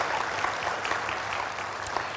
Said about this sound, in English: Yeah, give him a clap. He doesn't get many.